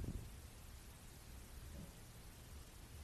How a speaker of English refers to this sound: Ooh, but rain is my favorite too.